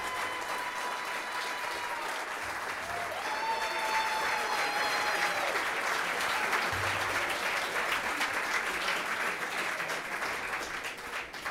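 A sustained round of applause from a crowd for former striker Les Ferdinand as he is introduced, steady and fairly loud for about eleven seconds, with a couple of held, whistle-like tones rising above the clapping early on.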